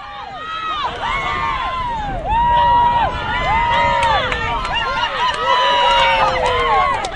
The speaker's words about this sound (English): There was plenty of cheering for those playing in the 12-a-side tournament at Wakefield Park in Island Bay yesterday afternoon. But the real cheers were reserved for the medal-wearing Olympians.